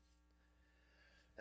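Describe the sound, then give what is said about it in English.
A single brief, sharp sneeze bursts out near the end after a quiet stretch of low room hum. “Bless you. Bless him.”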